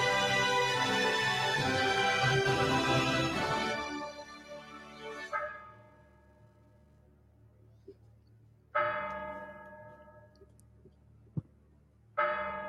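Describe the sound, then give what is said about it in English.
A clock bell strikes 13: a dense, clanging burst of ringing tones fades away, followed by single resonant strikes every few seconds, each leaving a long humming decay. No one speaks. “As the clock strikes 13, it's Friday, the 29th of December, year of our Lord, 2023.”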